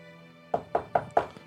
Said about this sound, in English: You do hear the knocking.